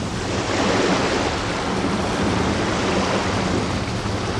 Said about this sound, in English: Why can't we all be at the beach? Sun beating down. Waves washing up.